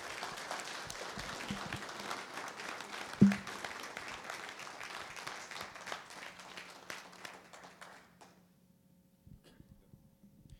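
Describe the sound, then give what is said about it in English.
A crowd claps steadily for several seconds to thank Jesus after a prayer, a dense patter of many hands that gradually thins out and fades, leaving a few scattered claps near the end. “Let's clap and thank you to Jesus.”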